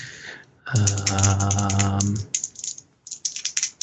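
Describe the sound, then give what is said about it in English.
A sustained low hum or drone is followed by a quick run of small clicks and clatters as someone searches for dice and rolls them, rattling about before settling. “Hold on, I need to find some dice to roll.”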